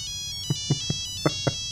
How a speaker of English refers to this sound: Let's run out of the slab and answer the phone. Come on.